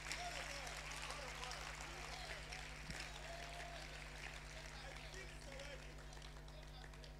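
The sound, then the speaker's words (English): An audience claps for the Lord Jesus together in a dense, steady wash of overlapping handclaps that holds at an even, fairly soft level for several seconds, with no voices standing out. “Clap for the Lord Jesus.”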